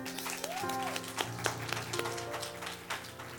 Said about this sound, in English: Clap, clap.